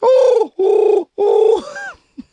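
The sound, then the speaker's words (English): A human voice imitates a pigeon being questioned on a polygraph machine, with three loud, harmonic cooing bursts in quick succession, the last one trailing off upward, followed by a couple of faint short clicks. “I'm just doing an impression of a pigeon being questioned on a polygraph machine.”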